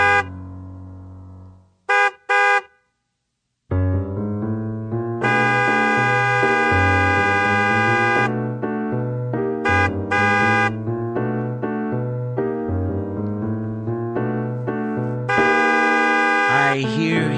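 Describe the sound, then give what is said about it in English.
A car horn honks insistently, starting with a few short toots and then blaring in long, loud sustained blasts broken by brief stabs, dominant with no talking. “Got to use Twitter, 'cause I can't honk the hell out of my horn.”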